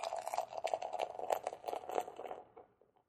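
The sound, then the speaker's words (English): Beer pouring from a 750 milliliter bottle into a glass, a steady fizzy, crackling gurgle for about two and a half seconds before it trails off into quiet. The beer is orangey yellow and a little hazy. No one speaks. “Oh, and this is in a 750 milliliter bottle. Cracking in. All right, here we go. Pour this sucker.”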